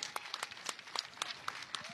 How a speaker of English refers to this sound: So they get a good hand from the crowd here.